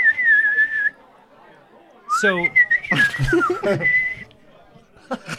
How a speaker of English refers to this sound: The acorn whistles. The acorn produces a pleasant, if not dense, thrumming kind of whistle. Almost a heavy hum, like a when you bottle? Blow into almost like a jug. Oh yeah, like that kind of noise.